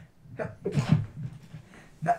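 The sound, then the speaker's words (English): A single sneeze: a quick intake followed by a sharp, breathy burst of hiss, framed by short voiced murmurs before and after at moderate volume. “Bless you.”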